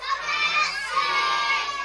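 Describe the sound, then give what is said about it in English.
A large audience of young voices shouts a short phrase together on the count of three at full volume, a loud, sustained group yell lasting about two seconds. “we're going to have to, on the count of three, we're going to have to yell out, "Come out, Sid."”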